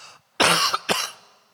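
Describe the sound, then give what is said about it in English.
Two quick, harsh coughs from a preacher during a sermon, the second slightly weaker, followed by a short fading room echo with no talking. “Excuse me, you're gonna love that cough today while I preach.”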